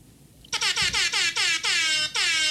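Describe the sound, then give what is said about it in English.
A loud, blaring rap air horn fires in a rapid series of short staccato blasts that merge into longer sustained honks, starting abruptly after a brief quiet moment with no talking. “That was our infamous rap air horn.”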